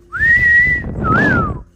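A person whistles two notes: a long steady tone, then a shorter one that rises and falls away. The whistling is fairly loud over a low, rumbling background.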